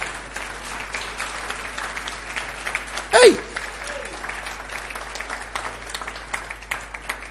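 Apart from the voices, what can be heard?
audience clapping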